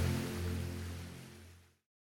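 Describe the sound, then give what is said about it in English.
Soft ocean surf washes steadily beneath low, sustained musical tones, a calm blend that holds for under two seconds before fading to silence. No one speaks. “You're listening to soothing sleep music and ocean waves.”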